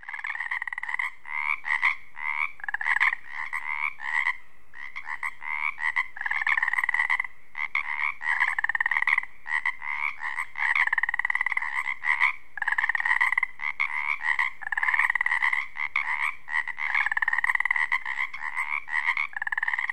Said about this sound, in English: Today, he takes us to the Olympic Peninsula in Washington State, near Ozette Lake. It's springtime. As the daylight fades over this wetland, the Pacific tree frog comes to life. They're also known as Pacific chorus frogs.